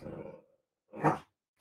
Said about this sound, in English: Sadie's decided she wants to play with the cat, so she's currently wagging her tail and barking at it